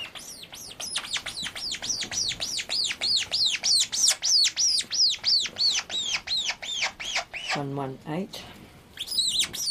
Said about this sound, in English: So when the birds are making these noises, it's just a natural noise that the birds make. It's not because they're in pain or they're being handled. This is just a natural noise that birds make, particularly when they're being fed.